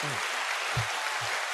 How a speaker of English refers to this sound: I gotta give y'all, you know what I'm saying, a round of applause. Real quick.